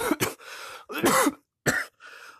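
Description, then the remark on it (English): Several harsh coughs in quick bursts: a double hack, a longer rough fit, then a final short cough, each trailing into raspy breath. No speech. “Do not cough. You are not 4 years old.”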